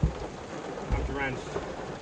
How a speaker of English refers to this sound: Let's just say, folks, it's raining out there